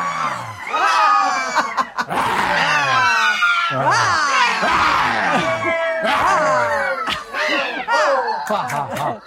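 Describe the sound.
A group of people doing a 'lion laughter' exercise, showing their claws, roar like lions, their loud, overlapping vocal growls and cries rising and falling in pitch in a continuous, boisterous din with no ordinary speech.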